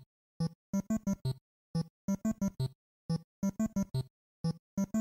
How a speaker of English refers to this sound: Here's what, this is the world one of Donkey Kong, or like 25 meters.